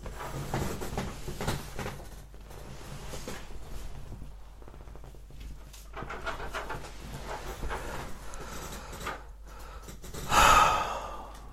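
A pet, Andre, scratches at a closed door to get out, in repeated rasping bursts, fairly soft, with a louder flurry near the end and no voices.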